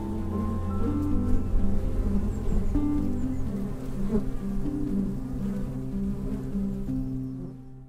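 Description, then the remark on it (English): A dense swarm of healthy bees buzzes steadily, a loud, layered drone with wavering pitches that continues throughout before thinning out at the very end. “Lloyd left that evening, secure in the knowledge that he had saved his beautiful life with the bees.”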